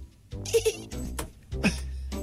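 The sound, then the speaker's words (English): A person's voice imitates a dolphin with squeaky, nasal chattering in two short bursts, punctuated by sharp clicks, fairly loud throughout. “It's not a bad dolphin noise, man.”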